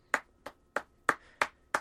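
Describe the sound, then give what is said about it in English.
A little light applause: six sharp, crisp claps at a slow, slightly uneven pace, like one person politely clapping, with no voices alongside. “But just to explain, you've got a little smile on your face, and you are just having a little applause because, of course, we are up for a football blogging award.”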